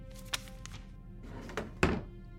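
A desk drawer where a letter is kept slides open and is pushed shut, with a few wooden knocks and a firmer thunk near the end, set against a quiet hum.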